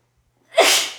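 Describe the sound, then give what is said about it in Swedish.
A single sharp, loud sneeze bursts out after a brief silence, with a breathy hiss that trails off quickly. “Ursäkta mig, det kom en nysning.”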